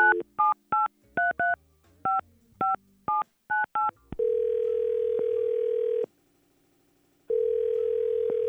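A rapid series of about a dozen touch-tone telephone keypad beeps as a call is placed from the Y100 radio show, followed by a steady ringback tone that pauses and starts again, clear with no talking.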